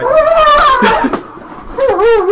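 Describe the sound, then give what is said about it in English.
A dog whimpers in a series of high, wavering whines, rising and falling in pitch, loud and continuous across the moment with a brief dip in the middle. “Yeah, so that's the way man's dogs interrupt.”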